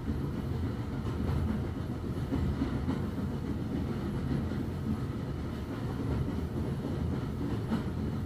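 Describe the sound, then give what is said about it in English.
A train rolls steadily across a high arched railway viaduct that curves through 120 degrees. Its deep continuous rumble carries a faint rhythmic clatter of wheels over rail joints, with no voices. “All to carry this magical train.”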